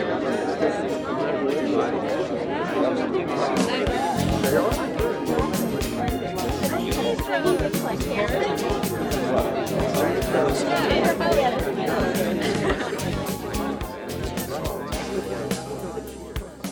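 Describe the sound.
A dense crowd of many voices chatters at once in a steady, loud hubbub at a party where people are dancing, with sharp clatters and thumps scattered throughout.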